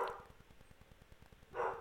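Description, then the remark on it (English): Two barks from dogs, one at the start and another near the end, over a faint, steady low thumping background, with no talking. “The dogs are going to go crazy.”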